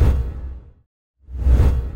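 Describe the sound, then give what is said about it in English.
A swoosh transition effect marking an advertising break: a broad rushing whoosh that fades out to a brief silence, then a second whoosh swells back in. Loud, with no talking. “If you are not a PSR Plus subscriber, if you're a PSR Plus subscriber, you're just going to hear some swooshes and we'll be right back.”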